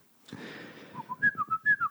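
Someone whistles a fast, aggressive riff like thrash metal: a sustained opening tone breaks into rapid, punchy staccato notes jumping between pitches. Close and clear, with no talking.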